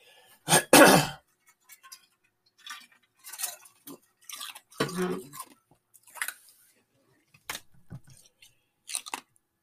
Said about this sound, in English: Hey, I take a drink of water here, sorry.